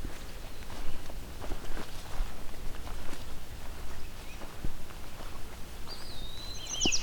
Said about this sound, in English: Oh, what's this? Sounds like an annoyed common yellow throat. Yep, it's a male.